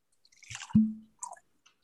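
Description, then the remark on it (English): A short pour of cask-strength whiskey into a glass: one low, hollow glug surrounded by small wet clicks and splashes, fairly quiet, with no one speaking. “We'll open it up there. I'm going to pour some in.”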